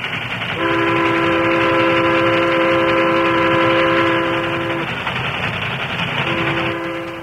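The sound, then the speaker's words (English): A speeding steam train bound for Flat Rock roars through rolling hills west of town with a loud, steady rumble while its whistle sounds one long, sustained blast, pauses briefly, then starts a second blast. “The train for Flat Rock was speeding through the rolling hill that lay to the west of town.”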